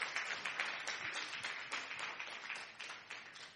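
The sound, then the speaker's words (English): An audience gives the Lord a round of applause as a pastor comes forward. Many hands clap together in a dense, crackling wash of sound that stays fairly even for several seconds, with no voices standing out. “Give the Lord a wonderful round of applause as Pastor Alice comes”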